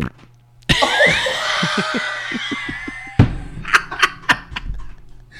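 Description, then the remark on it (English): A person does a mouth impersonation of a realistic wet fart: a loud, spluttering blast lasting a couple of seconds with a rapid low flutter, followed by a shorter burst and a few sharp clicks. “All of us are going to have to do a fart.”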